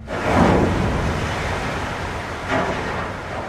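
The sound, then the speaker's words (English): An icebreaker ship crashes through snow-covered sea ice, rearing up its nose and slamming its heavy steel bow onto the ice to crack it: a loud, continuous roaring rumble with two heavier surges of grinding noise, with no voices. “So the ship will sort of rear up its nose and slam this heavy steel bow onto ice to crack it, and then sail through this big gash of open water that it's just opened up.”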